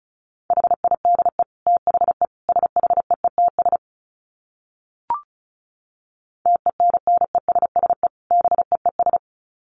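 Rapid Morse code at 35 words per minute: a steady mid-pitched beep keyed into quick dits and dahs, sent in two bursts separated by a pause broken only by a single short click.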